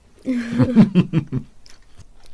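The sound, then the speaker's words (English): Chewing of an apricot mini sponge cake with a crunchy exterior and a thin chocolate layer on top, several quick rhythmic bites with soft voiced murmurs mixed in, fading to a faint smack near the end. “Let us know what you think of the apricot mini cake.”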